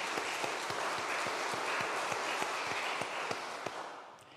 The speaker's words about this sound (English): So applause is in order.